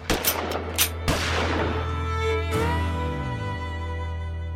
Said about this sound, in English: On a cold March morning in 1912, the Blue Ridge Mountain town of Hillsville, Virginia, would change forever when gunfire erupted in the Carroll County Courthouse.